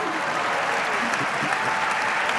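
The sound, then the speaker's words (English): An audience claps steadily, a dense, continuous patter of many hands at an even loudness throughout, with a faint murmur of voices beneath the applause. “Now you can clap.”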